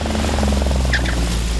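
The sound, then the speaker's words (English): A propeller plane's engine drones loudly and steadily, with a fast pulsing beat from the spinning prop and no voices, as former Red Bull Air racer Matt Hall lands his plane on the narrow race track at Mount Panorama, Bathurst, during Bathurst 1000 week. “Former Red Bull Air racer Matt Hall landed his plane on the narrow track.”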